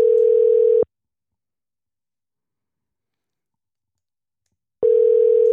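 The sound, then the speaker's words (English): A telephone ringback tone on an outgoing call to a landscaping business in California: a steady electronic ring lasting under a second, then about four seconds of silence before the next ring begins, heard clearly with no talking. “You're just listening to the phone ring.”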